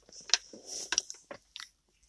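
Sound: slurping and chewing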